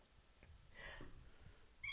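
A single small, soft sneeze, a quick breathy burst over faint background hiss, followed moments later by a short high-pitched chirp-like sound.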